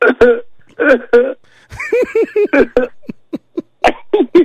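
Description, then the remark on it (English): A rapid string of short, throaty coughs, loud, coming in uneven bursts of two or three with brief pauses between them and no talking, from a person who is ill with a bad sinus infection. “I have this cough and I have some really bad.”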